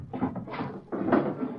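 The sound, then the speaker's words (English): A wooden dresser's bottom drawer, holding ore sample rocks, scrapes open, pauses briefly, then slides shut again with a rattling rumble, two moderately loud movements with no voices. “Over there in the bottom drawer of the dresser.”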